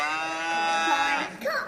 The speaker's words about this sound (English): A cow. A cow.